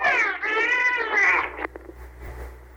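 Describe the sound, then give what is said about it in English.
A dolphin gives a loud, high, harmonic two-part call that mimics a girl's "hello", rising and falling in pitch, then fades into faint crackling background noise. “But this time, imagine the dolphin is not mimicking the girl's hello and is saying something else.”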